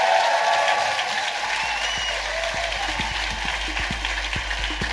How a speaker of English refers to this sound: Ladies and gentlemen, please give a massive round of applause for the... No, Richard. For the amazing Stephen Merchant! Stephen!